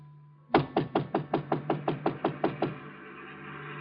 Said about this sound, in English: I got to Chinook's and it was closed. I knocked on the door.